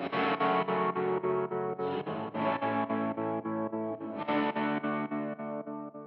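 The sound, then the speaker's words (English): Electric guitar chords pulse with a steady, fast tremolo, its intensity turned up, with the reverb set to studio mode and the mix turned way up, giving a roomy wash. Three sustained phrases ring out loud, with no talking. “Do a little more intensity and then put the reverb in the studio mode and then turn the mix way up.”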